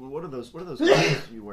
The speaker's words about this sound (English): Bless you.